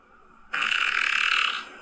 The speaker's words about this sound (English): So this guy is farting on his girlfriend, I think.